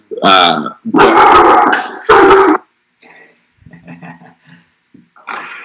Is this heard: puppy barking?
yes